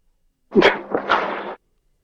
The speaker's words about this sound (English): I mean, did that ghost just sneeze? It does sound like a sneeze. But it does sound like a sneeze.